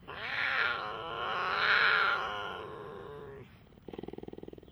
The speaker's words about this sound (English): Cougar, puma, panther, and mountain lion are common names for the puma concolor, the largest cat that can purr, meow, caterwaul, and yowl, but not roar.